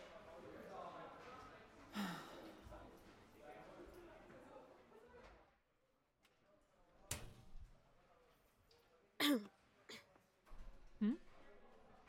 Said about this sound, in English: Nothing. I just coughed.